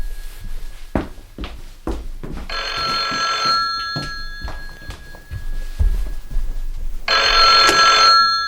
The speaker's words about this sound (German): Moment, Telefon.